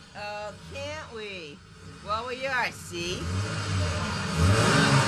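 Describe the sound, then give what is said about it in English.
A car engine revs and builds into a loud, steady acceleration that swells over the last couple of seconds, after excited shouting voices at the start. “You know what this is? It's a gun. See, now get going and step on the gas.”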